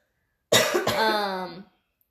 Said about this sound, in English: Excuse me. Oh my goodness gracious. Good Lord, she'd been coughing in my house. I just have a dry throat.